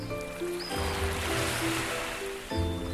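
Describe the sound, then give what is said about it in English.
A single ocean wave surges in and washes along the shore of an island beach for about two seconds, a broad rushing hiss that rises and fades, with soft sustained music tones playing underneath throughout. “The waves crashing on the shore.”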